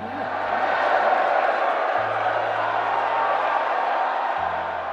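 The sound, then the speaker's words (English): A large crowd roars in sustained cheering, a dense, loud wash of voices with scattered whoops rising above it, holding steady for several seconds. “The crowd erupted, and with word trickling outward, Data Law stock was skyrocketing, even as Maggie spoke.”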